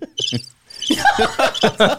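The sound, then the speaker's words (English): Loud, close-up cricket chirping: a quick cluster of shrill pulses, a brief gap, then a steady run of rhythmic chirps repeating about four times a second. “I swear that sample, I swear to God, they put the microphone right up. They're like interviewing a cricket.”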